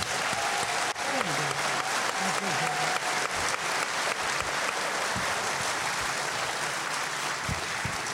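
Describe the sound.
Audience applause fills the whole stretch, a dense, steady wash of many hands clapping at constant loudness, with a few faint voices briefly audible underneath near the start.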